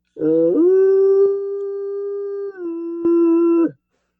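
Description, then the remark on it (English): A single sustained hooting tone blown through a pint glass like a hunting horn, a steady mid-pitched note lasting about three seconds, dipping slightly in pitch partway through before ending abruptly. “Oh, wait, here, I've got a pint glass.”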